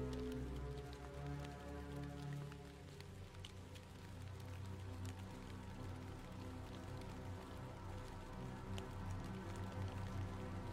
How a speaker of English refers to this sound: You continue to follow her and the clip, clip, clop, clop of the rain.